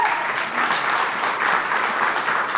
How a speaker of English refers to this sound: Like, everybody give Nick Ross a round of applause.